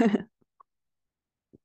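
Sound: cough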